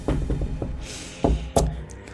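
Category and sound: impact, knuckles knocking on wood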